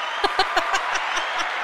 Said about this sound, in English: Hey, how about you hit that round of applause button for yourself there?